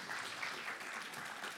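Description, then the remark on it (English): A crowd of people claps steadily for a speaker, a dense, continuous patter of many hands at a fairly even level for the whole stretch, with no voices standing out. “Can we give him a clap?”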